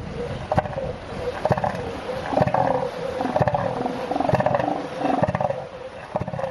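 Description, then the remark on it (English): Deep, rough, pulsing bellows from an elephant seal, repeated in loud bursts with a throaty, rattling quality, no talking over them. “No, it's an elephant seal.”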